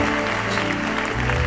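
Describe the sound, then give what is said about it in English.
A church audience claps their hands for the Lord in a dense, continuous wash of applause that holds a steady level throughout, with faint sustained musical tones underneath. “Clap your hands for the Lord now.”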